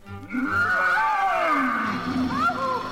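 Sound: lion roaring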